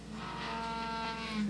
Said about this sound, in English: That's a happy cow. That's a down ass cow. Listen to that.